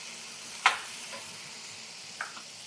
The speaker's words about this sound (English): All right, so we're sauteing now. We got our base layer going.